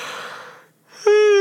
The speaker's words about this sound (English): If you don't know, yawning means someone's trying to breathe a lot.